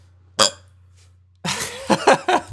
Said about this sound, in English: Ooh, good burp.